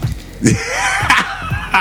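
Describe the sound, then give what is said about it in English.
A sneeze: sharp, breathy, hissing bursts of noise, loud against a quiet background, with no talking. “Bless you.”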